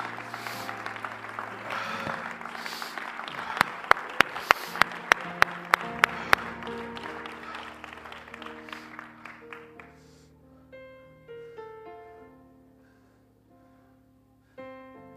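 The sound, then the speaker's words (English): A church audience claps and cheers for the Lord during worship over organ or keyboard music, with a run of sharp rhythmic claps standing out midway. The applause dies away after about ten seconds, leaving the music playing alone. “Come on, give the Lord a good hand clap today.”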